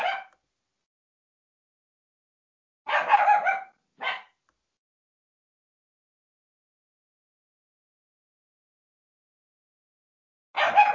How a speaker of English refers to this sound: My dog has heard another dog barking, so it's woken him up and gone mad.